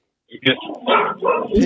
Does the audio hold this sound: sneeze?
no